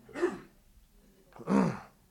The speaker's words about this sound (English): Well, you didn't repeat the cough. There you go.